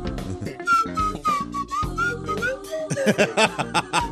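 A slide whistle plays a short, bouncy disco-style melody with gliding pitch swoops, fairly close and clear, before laughing voices break in near the end.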